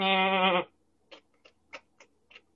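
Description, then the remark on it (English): A single loud bleat from a goat or sheep lasting about half a second, from seven goats and six sheep walking along in a line, followed by a few soft, irregular clicks and taps in otherwise quiet surroundings. “Okay, so corralled behind you in a little train is 7 goats and 6 sheep.”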